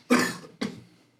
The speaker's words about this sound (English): Get rid of my little cough there.